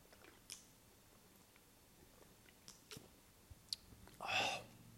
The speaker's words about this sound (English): So just let me have a drink, bear with me.